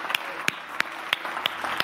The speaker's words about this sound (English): In the name of Jesus, can we applaud the Lord? Can we lift up His name?